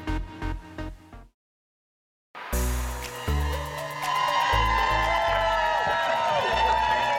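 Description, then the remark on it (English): A short burst of rhythmic music cuts to silence, then a large outdoor crowd erupts in sustained cheering and shouting over a pulsing musical beat on a sunny August morning, loud and continuous to the end. “We got a beautiful crowd out here today.”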